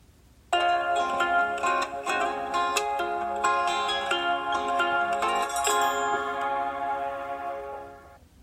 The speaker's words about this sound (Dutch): Dit was dus het opstartmuziekje van de Blindshell en daarna zei hij 12:30 middags met de Nederlandse Google stem.